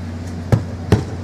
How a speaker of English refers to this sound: Pounds the table.